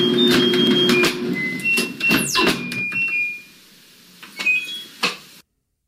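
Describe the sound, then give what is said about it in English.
Two people press buttons on a washing machine in a set order, producing a quick run of electronic beeps at shifting pitches that form a simple tune. Around it are clicks and clunks as one of them bangs the door in and out for a drum beat, with a few thuds near the end. “…, played on a washing machine to an impeccable standard.”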